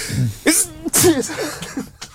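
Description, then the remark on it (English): A loud sneeze bursts out twice in quick succession, each with a sharp hissing onset and a voiced, drawn-out tail, followed by fainter breathy vocal sounds. “It was a sneeze.”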